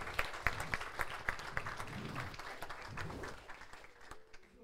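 crowd, audience applauding

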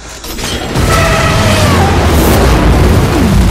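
sound effect, bombs exploding

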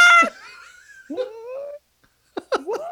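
animal, cat screaming

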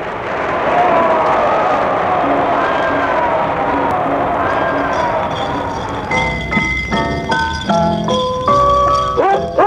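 crowd, audience cheering wildly

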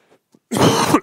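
human body sound, coughing

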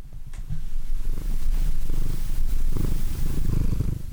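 animal, cat purring

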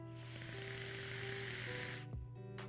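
vape coil crackling

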